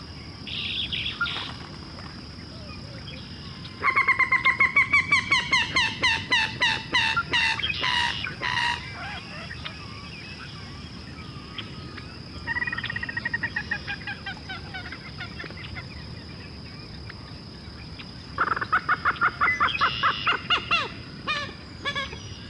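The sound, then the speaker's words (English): Loud calls of gallinules swimming close by, in clucking, chattering bursts, rapid repeated notes that speed up and trail off, heard three times with pauses between, over a steady high insect-like hum. “The gallinules are swimming really close by.”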